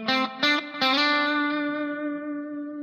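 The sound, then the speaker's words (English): A distorted electric guitar plays a few quick picked notes, then slides into a long sustained note that wavers gently with vibrato as it rings out. No one speaks. “So I'm doing that little slide and then adding some vibrato.”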